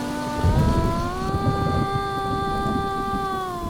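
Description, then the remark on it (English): Steady monsoon rain in India pours down continuously, driving a rain-powered billboard for Taj Mahal Tea; a dense wash of falling water with a sustained tonal hum running beneath it throughout. “But first, let's look at this billboard in India that's driven by the rain. The monsoons make this thing work.”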